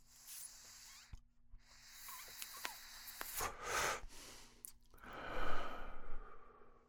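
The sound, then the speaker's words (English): A quiet, airy draw on a General Admission blinker vape pen holding a tiger blood pod, a soft hissing inhale followed by a longer, breathy exhale, with no talking over it. “I've already tried it a couple of times, perhaps, but here's my first real taste of tiger blood with the blinker from General Admission.”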